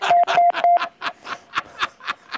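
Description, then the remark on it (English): Three short, evenly spaced mid-pitched electronic beeps of an EBS emergency alert signal in a house, sounding over a run of rhythmic, breathy noise bursts that keep going after the beeps stop. “It was like an emergency beep,”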